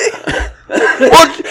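A person coughs in a quick series of four harsh, raspy bursts, the last one loudest and sharpest, with no talking.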